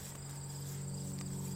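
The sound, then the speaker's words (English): A small, fat cricket chirps in a steady, high-pitched trill that runs through the whole moment, fairly soft, with no voices and only a faint low hum underneath. “Are you a cricket?”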